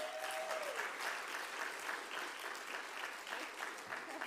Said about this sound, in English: Give her a big clap.